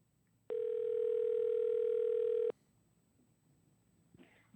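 A steady, loud telephone dial tone as a call is redialed after a wrong number, humming at one unchanging mid pitch for about two seconds, then cutting off abruptly, leaving low background noise and a faint rustle near the end.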